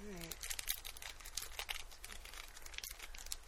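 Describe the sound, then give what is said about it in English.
A paper envelope being opened, with a steady run of crinkling, rustling and small tearing sounds over a few seconds, and a brief bit of voice right at the start. “Well, let's open them carefully because these could very well be given out to people as prizes”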